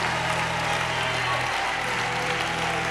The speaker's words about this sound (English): So please, if you're clapping, real clap.